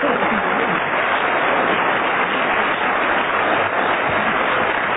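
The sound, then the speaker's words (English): Sustained applause from a studio audience at a team panel game after a cross-examination, a dense, steady wash of many hands clapping at a constant loud level for the whole stretch, with no speech heard. “The audience has been following that cross-examination with intense interest, which is more than I can say myself, and therefore I'm going to hand over to them once again to signify by their applause anything they like, really.”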